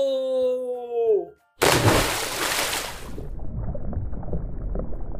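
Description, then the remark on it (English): A descending whistle-like tone gives way to a loud, rushing splash as a diver in a scuba suit plunges into the ocean, lasting over a second, followed by low, muffled underwater bubbling and gurgling. “Now that we have put the scuba suit on, it's time to dive into the ocean.”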